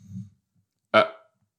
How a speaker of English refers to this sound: Excuse me. I just burped a little bit.